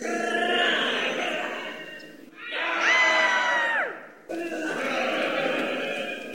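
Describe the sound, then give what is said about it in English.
A crowd of people screams together in a loud, dense, chaotic din, broken midway by a single long, shrill wavering cry before the mass screaming surges back. “Stop your screaming, you pissy gets.”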